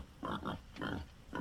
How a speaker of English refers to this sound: The pigs twitched and grunted and began to stir about.